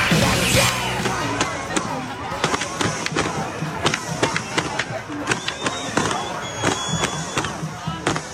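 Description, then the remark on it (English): A dense, noisy crowd at a pro-Palestinian march outside the White House in Washington, D.C., on Saturday night roars continuously while sharp bangs and cracks punctuate it irregularly, several loud impacts popping out over the steady clamor of many voices shouting. “And then a crowd outside the White House trying to break down the barricades.”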